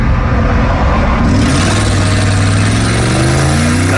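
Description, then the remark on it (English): A powerful Dodge Charger engine roars loudly, its pitch climbing steadily as it revs and accelerates hard as the driver takes off and speeds away, weaving through cars on an interstate. No one speaks. “The 23-year-old takes off, seen weaving through cars on the interstate in his Dodge Charger, passing by them like they're at a standstill.”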